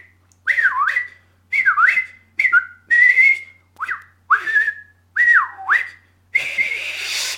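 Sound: a person whistling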